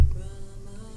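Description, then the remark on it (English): Mantra chanting plays quietly as background music, a steady low droning tone with a soft hum that holds evenly throughout, with no voices speaking over it. “So I hope the people listening to it will enjoy it, so we have some mantras going in the background.”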